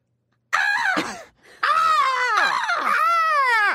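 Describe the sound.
A person imitates the crow's caw from wrestler Sting's theme song with loud, raspy vocal cries: a short squawk, a brief pause, then a longer wavering caw that rises and dips in pitch, with no other talk.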